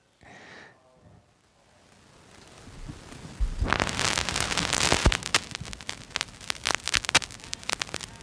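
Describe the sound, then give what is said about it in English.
Dense vinyl record surface crackle, with irregular pops and clicks over a hissy noise bed. It starts faint and grows louder and busier after a few seconds. No music or voices are clearly audible. “Oh, I love that crackle.”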